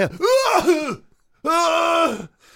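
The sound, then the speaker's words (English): Two loud throat-clearing coughs, each a strained, voiced rasp lasting under a second, separated by a brief pause. They sound like a person imitating a cough, with no talking. “You'd run already what you were supposed to run, and then you start coughing.”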